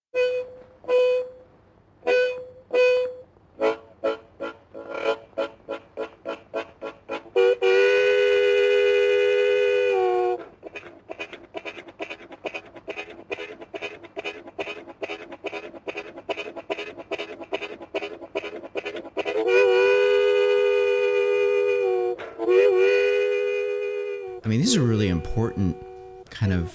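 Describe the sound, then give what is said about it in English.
A harmonica imitates a train: quick rhythmic chugging bursts build into long, loud wailing whistle chords, then more driving chugs, ending in sliding, bending whistle tones. “who brought the harmonica and the train sound to the Grand Ole Opry.”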